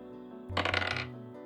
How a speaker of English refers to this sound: So I'm just going to roll this dice, and we are going to see which room we're staying in for our first night.